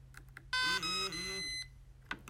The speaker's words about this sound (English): You have just heard three audible beeps, and I have also felt three vibrations. This means that the battery is at full strength.